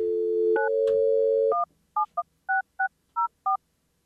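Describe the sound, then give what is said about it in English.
A steady telephone dial tone hums for about a second and a half, broken by a couple of beeps, then gives way to a quick series of about eight touch-tone dialing beeps as a call is placed to New Era Cap to try to reach Russ Brandon. “Let's see if we can get Russ Brandon on the phone.”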